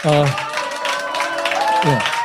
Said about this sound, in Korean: 이 싸움에 전면에 나선 이재명 후보에게 여러분 다시 한번 큰 박수를 부탁드리겠습니다.